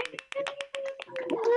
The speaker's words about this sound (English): Okay, so I've asked everyone to unmute just so we can give you a round of applause because that was fucking awesome.